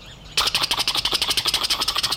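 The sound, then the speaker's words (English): A helicopter engine kicks in abruptly after a faint hum at the start of a music track's intro, its rotor chopping in rapid, steady pulses, roughly ten per second, loud and hissy throughout with no voices. “So here is the helicopter.”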